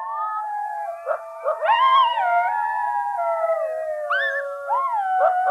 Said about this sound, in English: There's just kind of this mystical noise at night that was this very haunting howling that was going on.